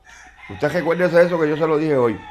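A cockfighter's rooster in Puerto Rico crows once, loud, a long harmonic-rich cock-a-doodle-doo lasting over a second and a half with a wavering, drawn-out finish.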